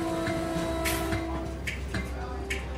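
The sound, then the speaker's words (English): A steady low rumble of a train carrying Walt Disney home from New York, rolling along rails, with a sustained hum and periodic clacks and short bursts of rattling noise, continuous. “On the train ride home from New York, Disney was furious.”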